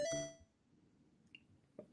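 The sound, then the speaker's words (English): A trap phone's electronic ring tone sounds briefly and loudly at the start, then fades, leaving a low background hum broken by a short, high chirp. “now he's answering calls on his trap phone.”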